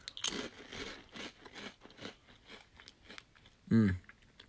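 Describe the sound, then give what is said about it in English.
A sharp crunch as a bite-sized, very salty potato chip is bitten, followed by a steady run of crisp chewing crunches, ending with a brief, louder hummed vocal sound. “They're crunchy, they're very salty, and that's just the way I like my chips, but if you don't like salt, they might not be for you.”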